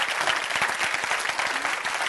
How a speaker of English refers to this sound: Today, I'm waiting while you all clap. How about that?